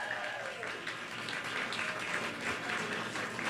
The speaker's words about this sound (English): Keep clapping, everyone. It'll help the folks on the radio.